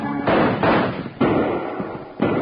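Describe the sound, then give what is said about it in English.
Four loud, sharp gunshots ring out at uneven intervals during a horseback chase with horses at full gallop, each cracking close by and trailing off into a brief echoing tail, with no voices in between. “I don't want to have to ride back through all that lead. Now, Bill, that last one was close.”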